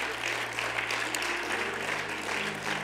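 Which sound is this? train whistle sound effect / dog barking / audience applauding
audience applauding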